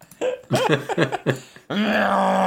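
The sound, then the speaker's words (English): Alien heptapod vocalizations from the film Arrival, with an elephant-like quality: a run of short, warbling, guttural grunts, then one long, steady, low droning moan that holds loud to the end. “it's just a noise, isn't it? It's heptapod a language elephant.”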